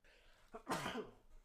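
A single sharp sneeze bursts out, preceded by a quick catching breath, then trails off into quiet; no talking around it.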